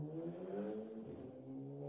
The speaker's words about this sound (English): That was literally, it had to have been a motorcycle that just went 80 miles per hour down my street. Oh, that was your place. Oh, that was mine. That was all me.